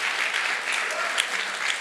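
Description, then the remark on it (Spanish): A crowd at a worship service claps loudly and steadily for the Lord, a dense, sustained wash of many hands applauding together with no pauses, full throughout. “Si lo cree, dale un aplauso fuerte, Señor.”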